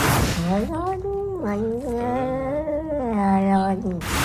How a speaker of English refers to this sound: Another exhibit B is a cat saying, hold on to my fur, I like it, which is an amazing one.